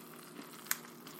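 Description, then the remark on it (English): Molten raclette cheese bubbles and sizzles in a pan, a steady soft hiss broken by one sharp pop and a few fainter crackles, with no voices. “So, despite the bubbling, the purple stripe has persisted.”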